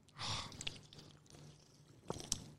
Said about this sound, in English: Should we have a sip of this bad boy first? Yes, we should, yes.